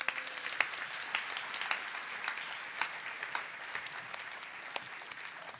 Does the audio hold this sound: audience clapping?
yes